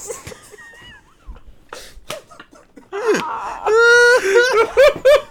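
A man screams in pain, a loud, strained, high-pitched wail that rises, holds and breaks into several anguished bursts, following a stretch of quieter gasps and scattered clicks.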